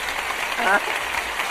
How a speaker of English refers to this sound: And I don't know why the audience are applauding for themselves. It's very strange.